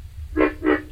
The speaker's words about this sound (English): Now, here is a frog. I've never heard of this one. This is called the pig frog. And this was recorded again in the Everglades.